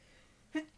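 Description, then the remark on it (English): A single fairly loud sneeze: a short breathy intake followed by a sharp, explosive burst of air at the very end. “Bless you.”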